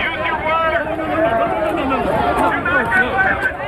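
A violent, chaotic crowd clash in Glendale, with police in riot gear present: many voices shout and yell over one another in a dense, steady roar that stays loud for the whole few seconds, with no pauses.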